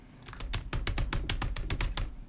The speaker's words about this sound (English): No, not actually. Type. There you go. You're typing it.